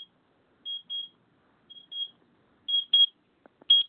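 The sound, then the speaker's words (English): A timer alarm beeps in quick pairs of shrill electronic tones, repeating several times with short gaps, growing louder and slightly rattly toward the end, with a couple of soft clicks. “Sorry, I'm having some timer issues. I'm going to have to take this out”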